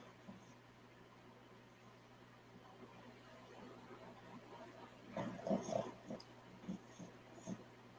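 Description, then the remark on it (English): A puppy snorts and snuffles in its sleep, a cluster of soft nasal grunts against a quiet hiss, followed by a couple of isolated snorts. “Puppy's getting all snorty. Sleep snorting.”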